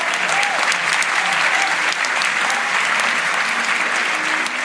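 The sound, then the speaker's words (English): Sustained applause from an audience for the signing of a treaty by the Democratic Republic of Congo and the Republic of Congo to protect a peatland, a dense, even wash of many hands clapping at steady volume for several seconds, with no voices standing out. “Yeah, big round of applause for that, I think.”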